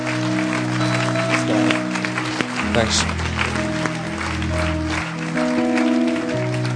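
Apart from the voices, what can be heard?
audience applause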